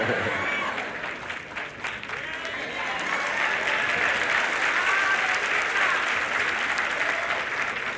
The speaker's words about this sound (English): I appreciate the half of you that applauded.